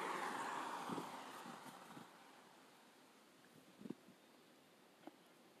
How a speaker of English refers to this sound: Like I said, I like to do the podcast and have let y'all hear the cars. Y'all hear the cars, you know, the motorcycles and dirt bikes and you hear the streets. That's what makes me different.